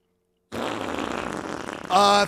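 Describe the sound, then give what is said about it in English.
A voice imitates a fart with a sustained, buzzy raspberry lasting nearly two seconds, ending in a louder, higher-pitched squeal. The sound is fairly loud, with no talking. “And then I would just wake up and fart, and a hilarious fart.”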